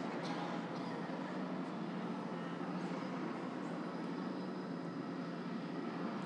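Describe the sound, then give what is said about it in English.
A helicopter's engine and rotor roar fills the whole stretch as a steady, dense drone that never fades or breaks, with no voices present; the helicopter is chasing a polar bear in order to tag it for a study. “So you think it might be traumatizing for a polar bear to be chased by a helicopter?”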